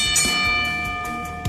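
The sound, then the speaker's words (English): A bell rings at the start of the show Wrestling with the Inner Man, with bright, sustained metallic tones that hang steadily and a few sharper strikes scattered through. It is fairly loud throughout and no one speaks. “I love that bell, and it's appropriate because this is the final show of the year.”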